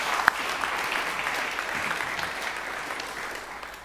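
An audience applauds with steady, dense clapping that holds at an even level for several seconds, one sharper clap standing out near the start, with no voices over it.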